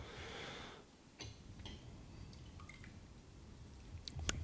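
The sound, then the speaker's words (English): Quiet drips of water falling into a glass of whiskey, a handful of small irregular plinks and splashes, with a soft wet squish near the end and no talking. “A little water does open that up a lot.”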